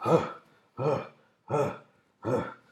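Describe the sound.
A voice imitates labored breathing, making four close, evenly spaced breathy bursts that sound like wheezes, groans and gasps, each about half a second long with short pauses between.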